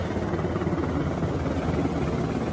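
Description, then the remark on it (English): An American-supplied helicopter under Taliban colors, paraded in Kandahar, Afghanistan, drones steadily overhead, its rotor chop forming a dense, continuous low-frequency thrum that stays loud and even throughout, with no voices present. “Their ragtag desert army now mechanized, even with the odd helicopter.”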